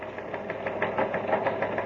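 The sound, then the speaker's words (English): A teletype machine in a newspaper newsroom, the Outer Space Dispatch, clatters steadily as a bulletin comes in, a rapid, even train of mechanical clacks and knocks over a constant whirring hum, at moderate loudness with no voices. “It's coming over the teletype here in the newsroom of Terra's biggest newspaper, the Outer Space Dispatch.”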